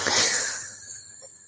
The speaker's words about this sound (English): Your frog's still calling